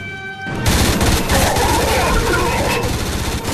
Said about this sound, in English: I'm surprised I can hear anything over that gunfire.